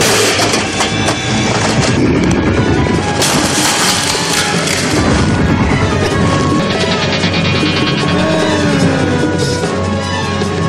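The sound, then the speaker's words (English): Electronics being smashed in a fight scene between Bigfoot, played by Andre the Giant, and the Six Million Dollar Man. A loud, continuous barrage of crashing, crunching and clattering debris with harsh metallic noise, sustained for several seconds, with no talking. “Smashing electronics!”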